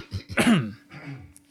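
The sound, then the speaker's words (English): A woman pausing while addressing a gathering gives a single raspy throat clearing, a short gravelly burst that trails off into a soft hum, followed by a faint quiet breath and small clicks. “She paused, clearing her throat.”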